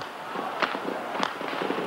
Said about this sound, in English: The noise of gunfire rose from all over the centre of Peking. It was unremitting. On the streets leading down to the main road to Tiananmen Square, furious people stared in disbelief at the glow in the sky, listening to the sound of shots.